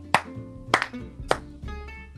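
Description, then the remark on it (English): A few sharp hand claps, four in all, spaced unevenly with a quick double clap in the middle, ringing over a steady low tonal hum. “Like, I had to clap.”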